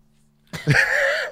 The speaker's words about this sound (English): I sneezed, the sunlight.